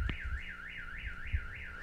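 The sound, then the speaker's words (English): A car alarm going off outside wails with a steady, rapidly warbling high-pitched tone that rises and falls about every quarter second, fairly faint, over low thumping rumbles. “Someone just broke into a car outside.”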